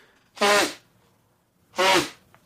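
Two loud, buzzy snores, each short and raspy with a rattling low tone, come about a second and a half apart with quiet in between and no talking.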